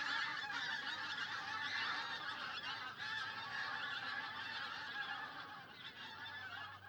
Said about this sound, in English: But in the winter, you'll have flocks of maybe 25,000 barnacle geese and 7,000 Greenland white-fronted geese. But when the geese first come back, that cackling noise just lifts the hairs on the back of my neck.